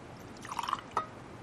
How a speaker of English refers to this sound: So the priest will bless the bread, and then he will take the chalice and he will put the wine in the chalice.